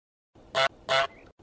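Two loud, nasal goose honks in quick succession, each a short blaring burst, played alone against a faint background hiss.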